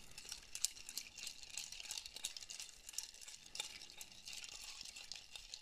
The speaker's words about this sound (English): Round and round the booze goes into the glass as we stir it up. Okay, so we've stirred that up.